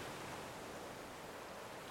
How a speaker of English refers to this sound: Let the sound flow through you. As the sound flows through you, you can notice that you can try to match your breath with the timing of the waves.